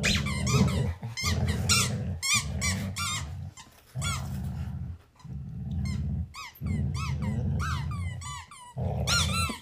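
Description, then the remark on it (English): A dog, Addie, growls low and steadily while rapidly squeaking a tug toy in her mouth, high chirping squeaks repeating in uneven bursts over the continuous rumble. “Well, actually, Addie is still growling, but she's squeaking the toy in her mouth as well.”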